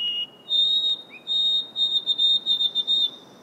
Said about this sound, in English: She's caught songs that are emblematic of summer in the North Woods, like the Swainson's thrush. And the white-throated sparrow.